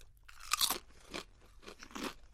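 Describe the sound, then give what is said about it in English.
Sour cream flavored potato chips being crunched and chewed, with several loud, crackly bursts spaced about half a second apart over a low steady hum, and no talking. “Maybe they use sour cream and chips for a reason. Mm. They smell bad. Chip cheers.”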